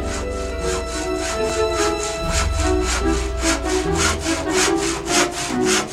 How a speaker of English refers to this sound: There's a wooden statue. We learn that it's Charles Lindbergh. The statue is shaking, and we hear the sound of a wooden. We hear the sound of sawing wood, right. And then this crack.